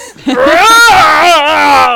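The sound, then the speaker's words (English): A man's voice lets out a loud, sustained, strained scream, a single drawn-out cry imitating an orc battle yell. “can we hear that orc scream?”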